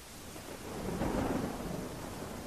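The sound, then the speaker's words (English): A rumbling thunderstorm with steady heavy rain at sea, about 10 miles off the coast of Whitby, a deep roll of thunder swelling in the middle and then easing, with no voices. “We're out in a storm about 10 miles off the coast of Whitby.”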